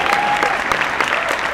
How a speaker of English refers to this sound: I don't have a lot of time. Don't clap too much.